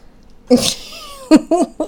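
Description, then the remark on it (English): Someone clears their throat: a harsh, breathy rasp followed by a few short, voiced throaty grunts in quick succession, fairly loud against a quiet background. “You were clearing your throat.”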